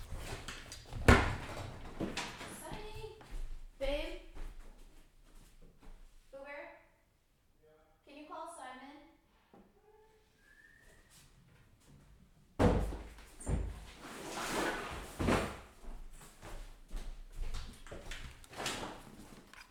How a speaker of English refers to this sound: We live in this ancient house. It's from 1896, and some of the doors don't lock. So I had to like pull up a suitcase and put it up against the door so that my dog can't run in.